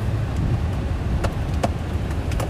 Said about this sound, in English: Oh, sorry, the AC turned on because the car is broken.